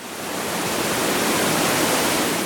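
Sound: waterfall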